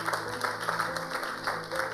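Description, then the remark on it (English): An audience breaks into applause, a dense, steady wash of many hands clapping at a fairly even loudness for the whole stretch, with no voices standing out. “Please clap for him again.”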